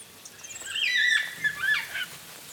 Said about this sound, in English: I can hear black cockatoos high up in one of those stringy bark trees.